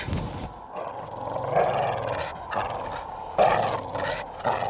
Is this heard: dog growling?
yes